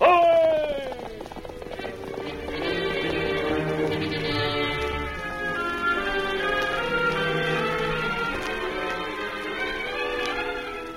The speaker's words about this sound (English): From out of the past come the thundering hoofbeats of the great horse, Silver. The Lone Ranger rides again.